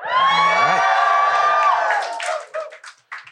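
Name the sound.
audience cheering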